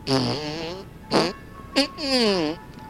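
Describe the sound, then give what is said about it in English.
A voice imitates fart noises as Leo the Farting Leprechaun on a St. Patrick's Day segment of the Toxic Wise S Show on Renegade Talk Radio, Las Vegas: several buzzy, sputtering blurts of differing length with wobbling, sliding pitch, fairly loud, the last one drawn out. “Oh, me lord, this is Leo the Farting Leprechaun, wishing you a happy St. Patrick's Day.”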